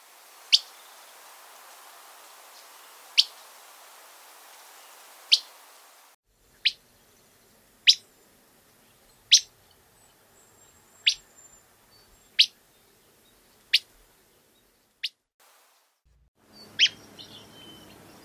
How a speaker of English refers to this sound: The most common call for the willow flycatcher is a whip call.